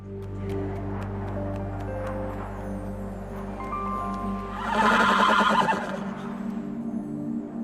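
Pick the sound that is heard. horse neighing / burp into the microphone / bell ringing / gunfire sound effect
horse neighing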